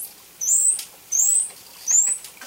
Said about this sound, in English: here's the most frequently used dolphin vocalization, the whistle number 2 Doyle mentioned